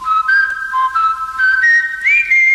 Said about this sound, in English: And there's a guy that was hired strictly to come in and whistle on this thing.